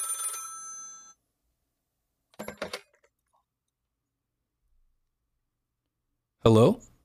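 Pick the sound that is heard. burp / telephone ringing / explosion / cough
telephone ringing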